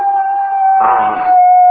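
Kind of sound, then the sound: animal, dog howling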